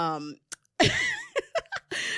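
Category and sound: human body sound, sneeze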